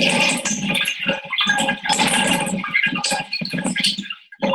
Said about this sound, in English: I started trying to see if I could get EVPs from the water going down the bathtub drain. So here you're going to hear the same sound you all hear when you let water out of the tub.